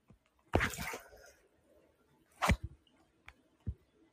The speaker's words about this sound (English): I'm going to finish off my bath. You guys can hear this water. I'm going to finish off my bath.